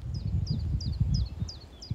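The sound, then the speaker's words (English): In Petersfield, on a very cold morning after a storm, a bird sings a quick, evenly repeated high chirping phrase, about six times in two seconds, over a low outdoor rumble of wind or handling noise, with no one talking. “This is very much the calm after the storm. Wonderful bird song.”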